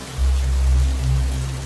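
rain falling

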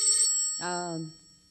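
telephone bell ringing

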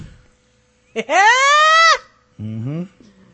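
sheep bleating

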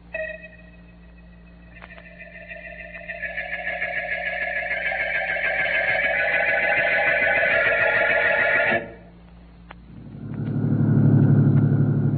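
car driving at night

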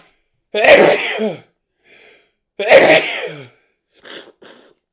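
sneeze

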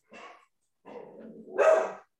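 dog barking

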